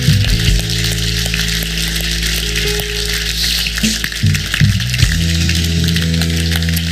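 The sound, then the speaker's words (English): A church audience claps their hands in praise to the Lord in dense, steady applause that holds at a strong level for about seven seconds, with low sustained tones shifting underneath and no voices. “Would you clap your hands one more time and praise to the Lord?”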